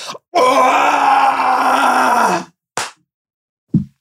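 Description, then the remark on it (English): A loud, gravelly scream with a strained, grunting edge, held steadily for about two seconds, then a quick breathy exhale and a short low burst. “It was more of a grunty scream.”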